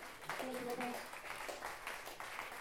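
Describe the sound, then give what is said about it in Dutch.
A crowd applauds with steady, dense clapping that stays fairly even and soft throughout. A brief voice-like tone rises out of the clapping near the start. “Applaus.”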